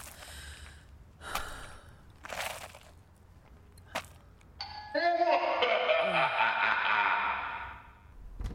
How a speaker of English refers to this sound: What's up with your doorbell? It's spooky. It's Halloween.